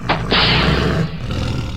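A deep, loud Burmese tiger roar bursts out, a broad rumbling growl that holds for about a second before trailing off into a lower, grumbling rasp.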